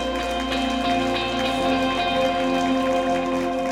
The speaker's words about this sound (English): Let's give those two young men a good hand clap this morning.